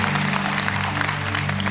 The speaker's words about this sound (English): But can we give them a round of applause? I'll tell them that you did.